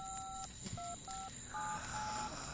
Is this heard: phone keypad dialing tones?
yes